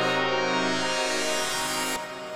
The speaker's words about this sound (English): The sound of an air horn. Honk! Go!